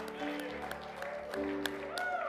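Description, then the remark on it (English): An audience claps their hands in praise in a loose, steady rhythm, the sharp claps cutting through sustained music and voices singing along. “Clap our hands and praise Him tonight.”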